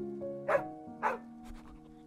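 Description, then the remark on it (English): A dog gives two soft, short barks about half a second apart, followed by a couple of fainter yips, over a quiet, steady musical drone. “With a wagging tail and a soft bark, Christmas would call the other dogs to come.”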